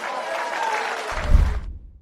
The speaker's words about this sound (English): And you hear people applauding for that.